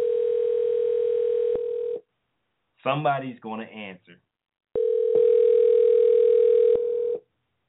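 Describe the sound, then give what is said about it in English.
Two long, steady ringback tones from an outgoing phone call that goes unanswered, each about two seconds, with a brief stretch of someone talking in the pause between them. “Somebody's gonna answer this damn call.”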